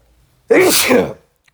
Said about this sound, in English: Sorry, I had to sneeze.